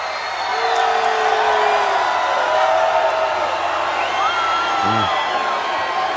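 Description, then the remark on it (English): A wrestling crowd roars steadily for several seconds, a dense wash of booing aimed at the Giant as he comes out, with scattered whoops and wavering yells rising above it, and no clear voice standing out. “So here comes the giant, who's a baby face, and they're booing him because Kevin Nash is cool.”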